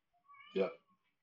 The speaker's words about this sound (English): Oh, and we've even got a final word in from the cat there as well. Yep. Queso the cat. Captain Queso.